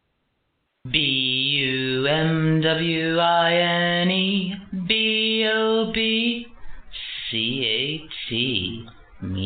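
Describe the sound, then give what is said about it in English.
A lone female voice sings a short, bouncy intro jingle with long held notes, spelling out letters in a sing-song melody. It starts after a second of silence and sounds thin and band-limited, like a phone recording. “I shouldn't have played his intro, not because of him, but because the person singing it and her hurtful comments last night.”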